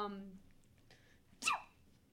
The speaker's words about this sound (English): starts sneezing. Are you... Mm-hmm. Yo, like, deities bless you. Are you okay? What was that? She's like, you good? That's a lot of sneezing. I don't, you know... Sorry. I don't know why I'm sneezing so much. I have a pretty bad pollen allergy